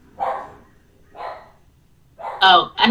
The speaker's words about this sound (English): Sorry, I'm just a little, you know, irritated by my dog who's barking.